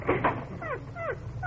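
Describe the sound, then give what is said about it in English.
Phoebe, a dog, whimpers at a door wanting to go out, in three short, falling whines, fairly clear, after a couple of brief scuffing or scratching sounds at the start. “Look, she wants to go out. Open the door, Uppy.”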